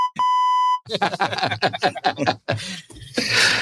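A single steady, loud censor bleep tone rings for under a second, then cuts off as people talk and chuckle, ending in a brief burst of laughter and noise.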